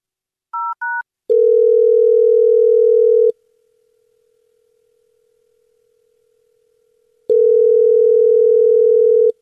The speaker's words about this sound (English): We're about to dial her phone number right now. Okay, are you ready? Yes, I am, please. All right. We're going to call her and see why she's not calling you back. Here we go.